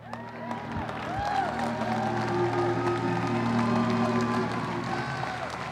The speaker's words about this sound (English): I got four of them clapping.